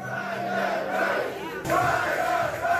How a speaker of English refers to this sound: That's the crowd at Fry's election night party chanting, "Fry that Rice."